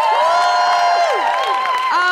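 An audience at a Christmas live show at King's Place cheers loudly and steadily for a performer, with high whoops and shouts sliding downward in pitch over a continuous wash of audience noise and clapping.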